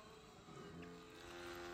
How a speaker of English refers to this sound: Oh, excuse me. Little toot toot on the boat.